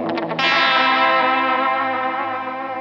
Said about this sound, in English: It's basically chorus, vibrato, and spangly sounds, they say. Pitch-shifting nonsense and haunting reverb, warped tape delay weirdness.